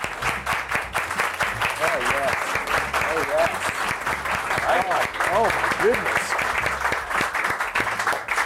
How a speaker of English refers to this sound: That was an excellent slow clap.